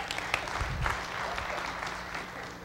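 An audience applauds steadily, a dense wash of many hands clapping at a fairly loud, even level for a few seconds with no one speaking over it.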